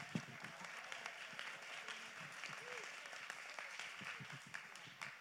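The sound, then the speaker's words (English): A church audience claps their hands together, giving God praise, in dense, continuous applause, a steady wash of overlapping claps with occasional sharper hits and faint voices mixed in. “Clap your hands back there. Clap your hands over there.”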